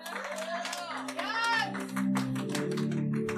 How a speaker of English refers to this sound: Can I get a clap offering with this one?